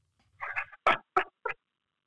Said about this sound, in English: Water went down the wrong pipe there.